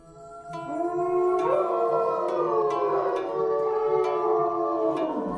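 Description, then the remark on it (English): Several wolves howl together in a sustained, overlapping chorus, long rising and falling tones weaving over one another for several seconds, steady in loudness with no talking. “Great open area for a large pack of wolves, and the wolves could roam from one end to the other.”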